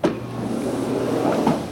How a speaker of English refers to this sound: A black helicopter takes off into the clear blue skies above Williamsport Regional Airport.